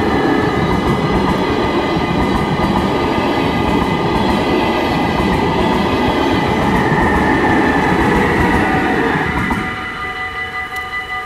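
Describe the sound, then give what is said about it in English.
A train leaves past a level crossing, heading towards Utrecht and Rotterdam, with a loud, steady rumble and clatter, high sustained tones ringing over it, before the noise drops and thins out as it pulls away near the end; cyclists and cars wait at the crossing. “And this train is just leaving in the direction of Utrecht and Rotterdam.”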